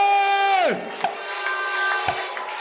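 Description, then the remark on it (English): A loud voice shouts with a falling pitch, then an audience keeps up steady clapping and shouts of praise, with a couple of sharper, louder claps standing out from the crowd noise. “Give him another clap and shout of praise.”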